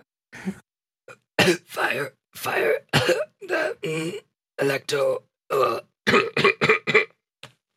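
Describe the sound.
A raspy series of coughs and throat clearing, roughly a dozen harsh bursts in an uneven rhythm, with a couple of hoarse words mixed in, apparently voiced in imitation.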